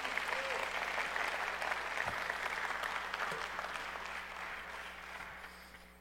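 A crowd claps steadily in dense, sustained applause that holds loud for several seconds, then gradually thins and fades toward the end, with a low steady hum underneath.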